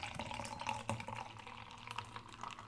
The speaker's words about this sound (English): Oh, there it goes. I just activated it. I had to tip it. All right. I'm going to pour it like a regular Guinness.